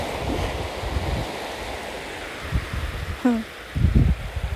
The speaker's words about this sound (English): I'm standing beside some water, as you can hear.